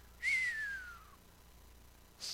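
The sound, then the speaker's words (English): A single clear whistle glides downward in pitch over about a second, followed by a brief faint breathy sound near the end. No talking, fairly quiet. “Whenever it's deep, just whistle.”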